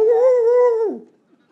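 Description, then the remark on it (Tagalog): A person imitates a dog's howl: one loud, drawn-out tone that holds steady for under a second, then slides down in pitch and trails off into quiet. “Hindi niya po tinawag yung aso para magkaung-kaung at iligtas na rin siping ng aso.”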